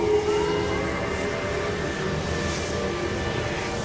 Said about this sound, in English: It's just the sirens.